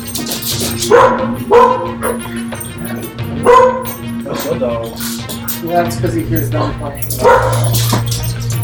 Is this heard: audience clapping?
no